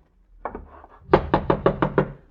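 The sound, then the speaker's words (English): A couple of soft taps, then six firm, evenly spaced knocks by a police representative on the door of a guest's chambers at an inn, fairly loud, with no voices. “Who is it? Open the door.”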